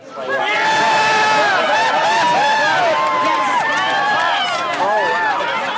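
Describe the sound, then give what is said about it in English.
A large crowd cheers loudly and continuously during a total eclipse in the Mediterranean in 2006, recorded by astronomer Doug Duncan; many voices overlap in excited shouts and rising, high-pitched whoops that swell and hold for several seconds without a pause. “Those cheers came during a total eclipse in the Mediterranean in 2006, recorded by my guest, astronomer Doug Duncan.”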